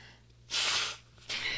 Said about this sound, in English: Oh, hang on, let me sniffle.